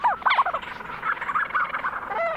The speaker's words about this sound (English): Lang Elliott recorded this flock of Leach's storm petrels on Kent Island in the Bay of Fundy.